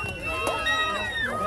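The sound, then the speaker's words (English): A crowd of many voices shouts "Trump" together at a rally in Ohio with Donald Trump and J.D. Vance, the overlapping calls loud, steady and raised in pitch throughout the brief burst. “Vance, and you can hear the people shouting Trump.”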